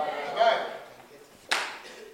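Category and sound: crowd, audience clapping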